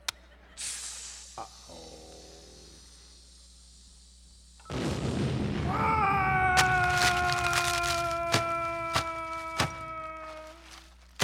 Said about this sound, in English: Boy, that blast did the job, all right. Blew these doors wide open. Wow, that blast blew all these crates in here open.